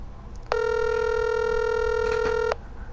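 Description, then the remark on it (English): A single steady electronic telephone tone sounds for about two seconds as a failed call is placed again, loud and even, then cuts off, leaving faint background hiss before and after. “Okay, our call has failed to read, so I'm going to call him back.”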